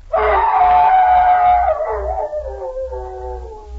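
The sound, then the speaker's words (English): A man's voice imitates a hound's howl for a Jell-O program radio play of The Hound of the Baskervilles, one long sustained wavering cry that starts loud and slowly tapers and drops in pitch, with a steady low hum underneath. “I think you ought to try that howl just once more.”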